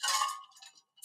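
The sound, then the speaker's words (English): A bright clink of a glass rings out as someone takes a big swig of a drink, slowly fading, followed by a brief, softer tap at the very end, with no voices present. “I just took a big swig of her water.”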